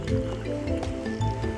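A sweet alcoholic drink being poured into a glass, a steady stream of liquid with a rising, filling gurgle over about a second and a half, no voices.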